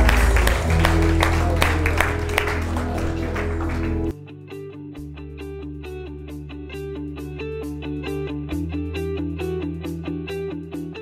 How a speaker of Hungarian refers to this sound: Halleluja! Adjunk egy tapsot az Úrnak. Halleluja! És dicsérjük Őt!